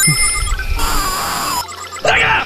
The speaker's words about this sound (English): Calculating computer activated. Computers, beeps, beeps.